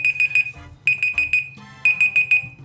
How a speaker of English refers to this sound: I got nervous because the beeps were coming.